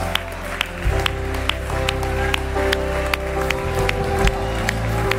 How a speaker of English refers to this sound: Come on. We're going to give them a cheer. Come on.